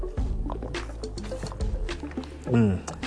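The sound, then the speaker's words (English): Swallowing and liquid sloshing as someone drinks water, a few wet gulps in quick succession, ending with a short voiced exhale. “Golly, love this water.”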